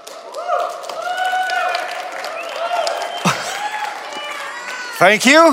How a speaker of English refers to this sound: Thank you. That was oddly self-serving, just getting people to applaud for me for Friday Night.